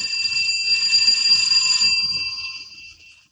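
An electric doorbell at a deserted-looking house on Durant Street, tried by Clark Kent, rings in one long, continuous burst lasting a couple of seconds, bright and fairly loud, before trailing off. No one speaks.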